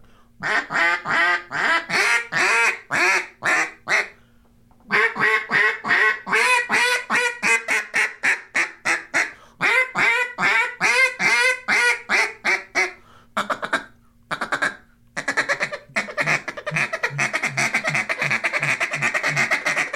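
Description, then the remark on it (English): A 2023 Jargon Call for Independence duck call, built on an Arkansas-style J-frame tone board and finished in red, white and blue stars and stripes, blown in loud, rapid quacking sequences, bursts of sharp raspy quacks in fast rhythmic runs with brief pauses between, ending in a long rolling series of chattering quacks, clear. “The Call for Independence, again, we built it on the Arkansas style J-frame tone board, the live duck. Here's some sound from it.”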